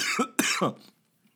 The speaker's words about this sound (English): See, you get to hear me cough live. I will be editing that part out.